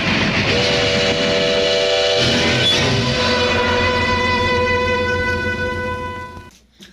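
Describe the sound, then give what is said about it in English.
A loud, sustained steam train whistle from the film Terror Train blows for several seconds over a heavy rumble of rolling rail noise, its pitch shifting slightly midway before cutting off abruptly. “Toot, toot. The sound of terror. Toot, toot. All aboard.”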